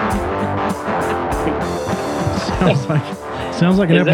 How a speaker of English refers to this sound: That cat is causing a horrendous noise.